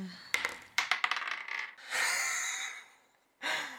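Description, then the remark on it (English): Dice clatter across a table as players roll initiative in a tabletop role-playing game: a quick run of sharp, bright clicks, then a softer rattling roll that fades, followed by one more short clattering burst. No one speaks. “I would like you all to roll initiative.”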